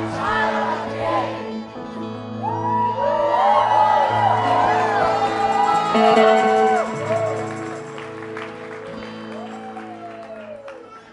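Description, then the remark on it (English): An audience at a church service cheers, whoops, claps and stomps its feet loudly throughout, with excited shouts rising over a dense, steady wall of crowd noise and a sustained musical hum beneath. “Now that's what I call a hand clapping, foot stomping good time.”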